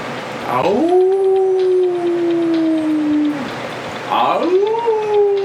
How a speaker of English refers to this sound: This dog is howling nonstop.